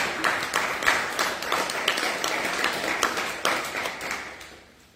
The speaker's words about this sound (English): I think we can give God and these people a round of applause.